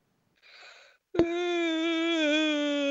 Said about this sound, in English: Sorry. Making me yawn. It's contagious.